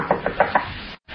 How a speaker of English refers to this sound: Rap on the door,